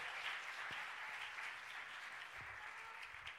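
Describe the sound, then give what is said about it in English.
A church audience claps steadily as a clap offering to the Lord, many hands blending into a dense, continuous wash of applause that holds at an even level throughout, with no voices rising above it. “Let's give the Lord a great clap offering.”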